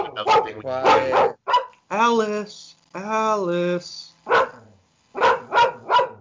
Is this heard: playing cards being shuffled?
no